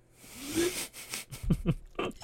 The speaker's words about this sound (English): You know, well, the Captain's when it's all milk, done and you slurp right up the milk right at the end. Let me tell you how the cap tastes. When it's finished, slurp down that Captain milk.